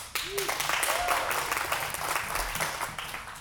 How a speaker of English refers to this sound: Amen. You can clap.